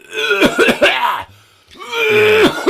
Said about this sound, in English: that cough is shit compared to the … one